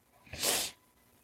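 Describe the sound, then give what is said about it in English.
A single sharp sniffle caused by allergies, a brief hissy rush of air through the nose lasting under half a second, heard on its own with no talking around it. “Forgive my sniffles, I got allergies going galore here.”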